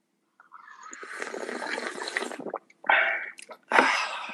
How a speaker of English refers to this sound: All right, well, let's take our first sip here. Cheers. Cheers.